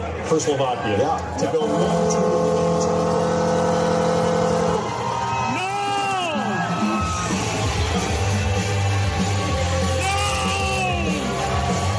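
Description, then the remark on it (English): At a draft party in a local bar in New Jersey, the New Jersey Devils' goal horn blasts one loud, steady, multi-toned note for about three seconds over a roaring crowd after the Devils select Simon Nemec second overall, then fans whoop and yell as the Devils' goal song plays beneath the cheering. “So towards the end there, you hear the Devils' goal horn and goal song playing.”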